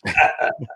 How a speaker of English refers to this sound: Well, what would a live stream be without a dog barking in the background? You know, really, let's face it. He's so annoying.